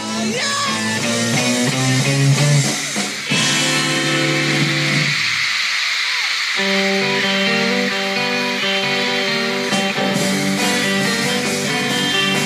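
A concert crowd at the Hollywood Bowl screams without letup, a loud, shrill wall of noise over sustained musical tones that shift and pause briefly before the roar carries on.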